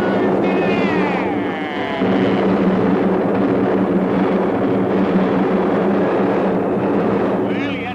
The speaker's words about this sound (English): Obviously under the floor, because the first explosion set off another and another and another. And before you know it, the whole village went up.